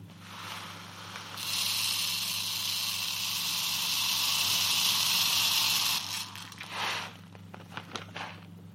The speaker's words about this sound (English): Yeah, I have these little tiny glass beads. They're 2 millimeters in diameter, and I'm going to pour them into the brain case until the inside of the skull is full, and then pour the beads out, and I'll measure the volume from the graduated cylinder.